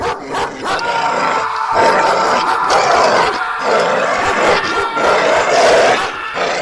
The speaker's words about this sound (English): Oh, the dog's got him again! Oh my goodness, he's being eaten alive right now! Oh, this is horrible! I hate this sound!